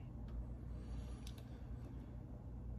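Steady low rumble of road traffic with engines idling, broken by a couple of brief high hissing bursts like a bus's air brakes releasing. No voices.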